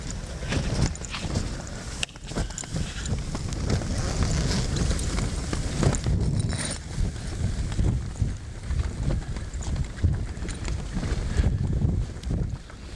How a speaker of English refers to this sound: It's windy out there.